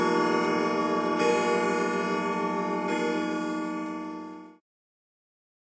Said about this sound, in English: I like a good grandfather clock right there. I like that sound. I haven't heard that in a long time. It reminds me of my grandparents' house, actually.